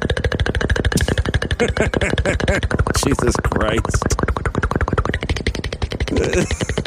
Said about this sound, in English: It's a helicopter.